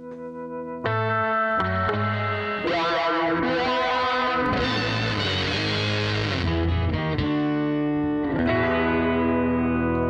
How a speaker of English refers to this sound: We just play the theme song first? Yeah, let's do it.